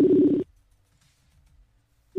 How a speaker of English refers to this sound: I can hear it ringing.